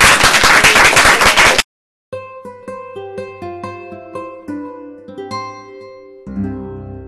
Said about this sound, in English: It's just about 4 o'clock, so if we could please give all of the panelists a round of applause.